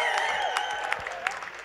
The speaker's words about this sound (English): This is an incredible track. I wish you guys all the best. We're gonna hang out for like 15, 20 minutes. One more round of applause for this man.